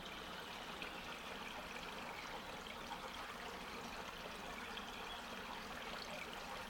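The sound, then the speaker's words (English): A small stream from a sudden upwelling of water trickles and burbles steadily over gravel in the lower reaches of a dry hiking trail, flowing about 20 feet before vanishing underground beneath the gravel; a continuous, gentle flow with no voices. “in the lower reaches of the trail we discover a sudden upwelling of water that flows downstream for about 20 feet and then vanishes underground beneath the gravel.”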